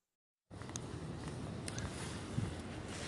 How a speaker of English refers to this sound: I'm taking a walk in Germany, very windy day